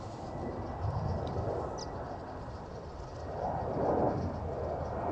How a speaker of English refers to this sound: Might be able to hear the many aeroplanes which are going to be passing overhead. There comes one now, a Qantas jet. They fly over Woodbridge, coming into land at Perth Airport.